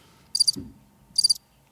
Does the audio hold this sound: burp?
no